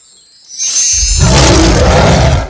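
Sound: bear roar sound effect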